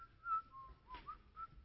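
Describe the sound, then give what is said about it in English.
A person whistles a short, wandering tune, the notes sliding up and down in a light, casual rhythm at a soft level with no talking. “You're a little nervous, and you're following after Jesus, and Jesus is just cruising along, whistling.”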